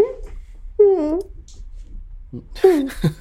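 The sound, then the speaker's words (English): A person whimpers like a puppy, making high, wavering whiny cries in short bursts, with a breathy rising squeal near the end, fairly loud against a quiet background. “You sound like a puppy.”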